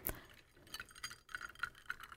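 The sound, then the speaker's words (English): A few light glassy clinks and taps ring out, fairly quiet, as coupe-style glasses of icy-cold gin and tonic are clinked in a toast, with a bright initial chink followed by several softer ticking contacts, no voices. “But it's reminiscent of a champagne coupe and... it's icy cold. So let's see how this goes. Cheers. Okay, cheers.”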